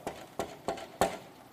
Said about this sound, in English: He was hearing God's call on his life. But he didn't feel qualified to answer the knock.